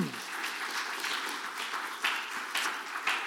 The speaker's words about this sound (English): So big round of applause for her. She's amazing.